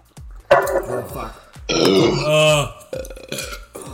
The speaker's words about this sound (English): I'm so sorry, listeners. You're about to hear about six belches from all three of us.